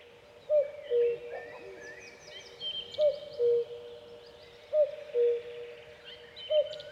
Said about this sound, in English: And you would be cutting along, and the next thing you see all the birds rising out of it, and you'd also hear the cuckoo in the distance. And it was delightful.